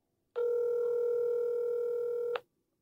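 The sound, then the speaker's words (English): A single steady electronic telephone ring tone, heard from the caller's end, sounds clearly for about two seconds and then stops, with no voices and no pickup. “Both of them won't answer the phone.”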